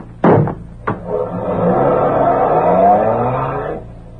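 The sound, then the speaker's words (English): Two sharp thumps, then a car engine revs up loudly, its pitch climbing steadily as it accelerates away for a few seconds before cutting off. “Is that car there? Yeah. Everything okay? Yeah, get going.”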